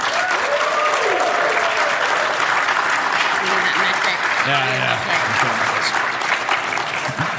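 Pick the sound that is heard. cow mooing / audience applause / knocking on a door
audience applause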